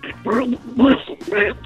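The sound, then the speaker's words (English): A person imitates a cartoon duck voice, producing three raspy, garbled, quacking bursts of nonsense in quick succession, fairly loud with nothing else behind it. “You know, I don't know what you said, but I did know that it was a duck.”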